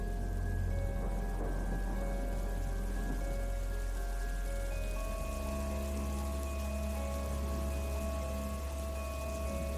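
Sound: rain falling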